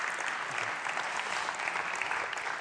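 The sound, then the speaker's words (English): A church audience clapping steadily for a member called up to the front, a dense wash of many hands at an even, sustained level with no break or voices standing out. “Let's give him a round of applause just for being here.”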